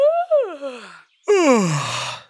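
Two drawn-out yawns in a row, each a voiced, breathy sound that swells and then slides downward in pitch, fairly loud, with a brief silence between them.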